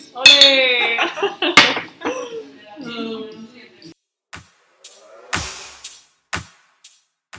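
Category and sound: household object, glasses clinking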